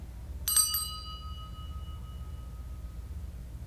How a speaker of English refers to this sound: We remember them all, and we ring a bell for all of them collectively now.